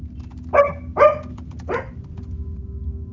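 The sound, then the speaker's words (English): A dog barks three times in quick succession, sharp, over a steady low background hum. No one speaks. “And the dog says yes.”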